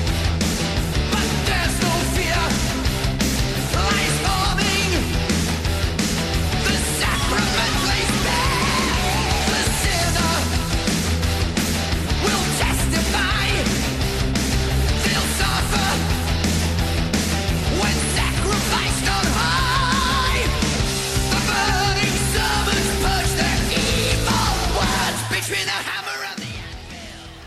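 A heavy metal song plays at full volume: dense distorted guitars, pounding drums and high shouted vocals, steady throughout before cutting off abruptly near the end.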